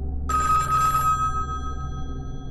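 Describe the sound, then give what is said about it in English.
A telephone in a house rings once with a bright, metallic bell burst that lingers and fades, heard alone over a low steady hum. “I walk to my phone.”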